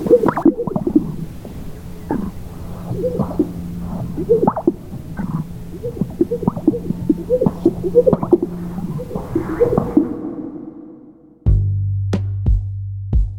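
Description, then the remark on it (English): A male grouse's courtship display before dawn, males puffing out their chests and strutting to catch the females' eye: a long run of low, bubbly pops and gurgling whoops repeating in quick, uneven bursts, followed at the end by a steady low droning hum with a few sharp clicks. “And this is what their pickup line sounds like.”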